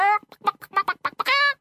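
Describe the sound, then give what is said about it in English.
A human voice imitates a hen clucking: one drawn-out squawk, then a quick run of short, clipped clucks, and a final long, rising cackle, fairly loud. “Cried the hen, happy to have been asked to help.”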